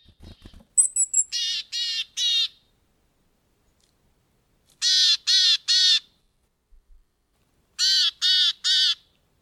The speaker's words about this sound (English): This is the case for members of the family Paridae, such as tits and chickadees. These little buggers call to each other frequently. Here's a willow tit calling in Northern Europe.